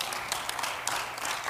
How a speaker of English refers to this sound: Give the God a clap offering. Amen.